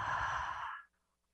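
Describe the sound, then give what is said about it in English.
A single long, breathy exhale during a guided deep-breathing exercise, fairly soft, with airy noise that fades out after under a second, leaving quiet. “Exhale.”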